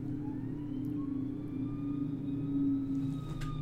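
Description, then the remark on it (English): A fire truck rumbles steadily outside a house, its deep engine drone filling the background while faint, thin higher tones drift over it. No one speaks. “Oh, I had a fire truck. There's a fire chief.”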